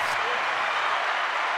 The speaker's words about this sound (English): My own hand clap.